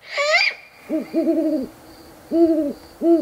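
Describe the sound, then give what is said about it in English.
An owl hoots several times in a loose, uneven rhythm, each call a clear, wavering tone, preceded by a brief high-pitched chirp at the start. No one speaks. “I know a cracking owl sanctuary.”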